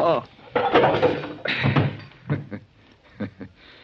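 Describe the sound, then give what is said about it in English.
A staged fistfight with a poke to the jaw that knocks a man out as he grabs a key: several dull thumping blows land in quick, uneven succession, mixed with grunting voices and scuffling. “That's a poke in the jaw I gave you that knocked you out”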